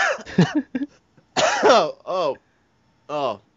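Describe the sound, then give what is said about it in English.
A close, fairly loud bout of coughing from one person, a few harsh bursts followed by throat clearing and strained, voiced hacking sounds with short pauses between them. “Oh, I think I swallowed a bug or something.”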